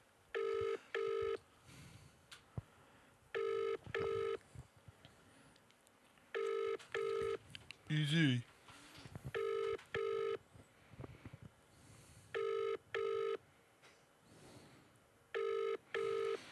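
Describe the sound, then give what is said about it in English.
A telephone ringback tone repeats in steady double bursts, about six pairs over the span, on an outgoing call from a phone pieced together from an old house phone and an iPhone, with faint background noise and a brief voice speaking once in the middle. “It's a cut and shut from like an old house phone and an iPhone.”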